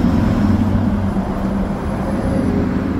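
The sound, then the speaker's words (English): An electric school bus, spotted in Raleigh County, West Virginia, drives by with a steady low hum and broad road noise, no engine roar, holding fairly even in loudness throughout. No one speaks. “this video of an EV school bus he spotted in Raleigh County, West Virginia.”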